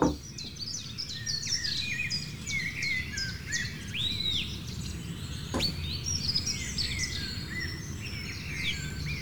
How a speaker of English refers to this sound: Oh, dude, those are like local finches, right? Are those finches, those brown ones? Are they sparrows? Those are sparrows. Those are sparrows? And they're like super clicky, you know that? Yeah, they get together.